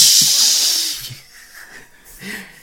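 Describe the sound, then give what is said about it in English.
A voice imitates a NOS nitrous oxide boost: a loud, bright hissing rush that lasts about a second, then fades into breathy mouth noises and a short second hiss. “They put NOS on them.”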